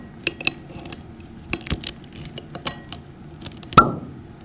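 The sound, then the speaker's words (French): Scattered small clicks and scrapes of handling a bottle of 2019 Château de Fleury, a Gamay wine from Beaujolais, then a single sharp pop near the end as the cork comes free, with a brief ringing tail. No one speaks. “Voilà, donc on va ouvrir un Château de Fleury 2019.”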